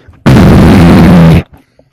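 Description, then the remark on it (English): A voice imitates a death metal roar: one loud, raspy, low-pitched guttural growl held for just over a second, starting and cutting off abruptly, with quiet before and after. “Should I do like a one of them like death metal roars?”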